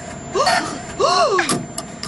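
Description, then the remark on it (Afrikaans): An ATM whirs as it dispenses cash: two rising-and-falling mechanical whines with rattling bursts, ending in a sharp clack and a couple of quick clicks. “Daar spoeg die masjien die geld uit.”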